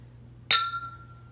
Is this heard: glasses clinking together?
yes